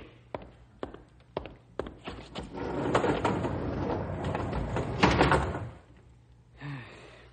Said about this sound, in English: Close the doors